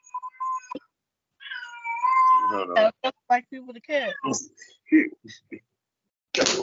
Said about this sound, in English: No, the cat is in heat. Go upstairs. The cat is in damn heat.